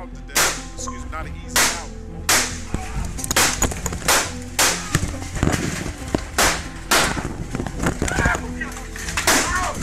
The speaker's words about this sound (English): At 1:30 p.m. that Sunday afternoon, August 26, 2018, a flurry of gunfire broke out at the Good Luck Have Fun Bar, located inside the Chicago Pizza